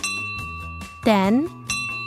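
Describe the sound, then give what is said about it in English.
A bright bell, set up in an office to ring each time an order comes in on Netflix's launch day, rings repeatedly, its sustained metallic tone hanging over a quick run of strikes, with a brief rising voiced exclamation cutting in midway. “The team set up a bell in the office that would go off every time an order came in.”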